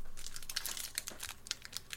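A pack of Lower Decks trading cards is torn and crinkled open, recorded on a Shure SM7B microphone: a steady run of crisp, rustling foil crackles with sharper tearing bursts scattered through, moderately loud and with no talking.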